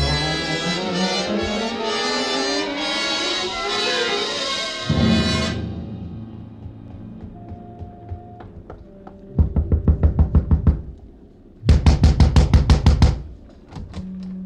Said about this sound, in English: Gentle knock does it,